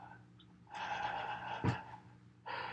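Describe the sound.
A voice imitates heavy breathing: a long, raspy, breathy stretch with a sharp catch partway through, a short pause, then another loud breath begins.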